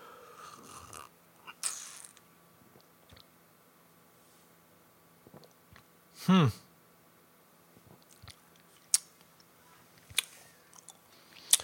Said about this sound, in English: Let me have another sip.